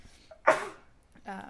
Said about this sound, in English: Bless you. Thank you.